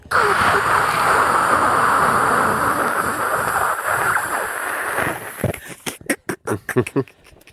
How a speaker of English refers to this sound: And they've got the white noise thing. Mm. Turn up the white noise.